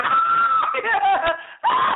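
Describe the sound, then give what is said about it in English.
A voice imitates Keira Knightley's hysterical screaming and laughing in the opening scene of the film A Dangerous Mind, about Carl Jung: a loud, shrill, wavering wail breaking into choppy cackles, pausing briefly, then shrieking again. “She screams hysterically and laughs like that at the beginning scene of A Dangerous Mind, I think is the name of the film, all about Carl Jung.”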